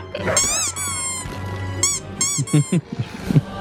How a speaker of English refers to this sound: I didn't just hear the squeak.